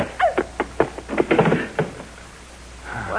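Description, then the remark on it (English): A flurry of dull wooden thumps and knocks lands in quick, irregular succession, fairly loud, as a chair strikes someone, then a brief strained vocal sound at the end. “With what? The chair, anything.”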